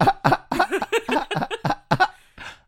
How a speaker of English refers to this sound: No, I sorry, I laugh like that when I have to cough and I don't want to cough.